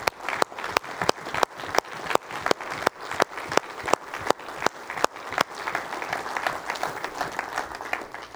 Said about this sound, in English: Mamas, I want y'all to just stay seated. I want us men just to get up and applaud the mamas.